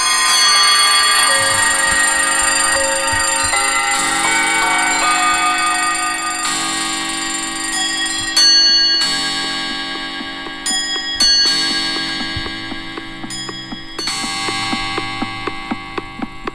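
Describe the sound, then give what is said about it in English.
A dense wash of many clocks, lined up by hand for a song's long musical intro, chiming and ringing at once, bright bell tones layered over steady ticking, loud and continuous with sharp new strikes cutting in toward the end. “Once again, they had to line all these clocks up manually.”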